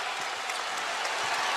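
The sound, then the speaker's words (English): A large basketball arena crowd on its feet roars steadily as Collins brings the ball up the floor with the Billikens needing to score to win, a dense wash of cheering and clapping that stays loud and constant throughout, with no single voice standing out. “Collins, crowd on its feet.”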